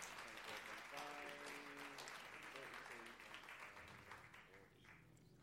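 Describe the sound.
An audience applauding, a dense steady patter of clapping that fills the whole stretch and fades slightly toward the end, with a voice briefly heard over it; a round of applause for a participant who helped out.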